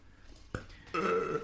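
A person's loud burp, pushed out and drawn out on purpose, that opens with a short gulp and then stretches into a long, sustained croaking rumble, drawn out to the end with no talking.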